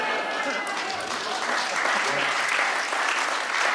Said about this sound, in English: just going to let the applause ride. That was very good.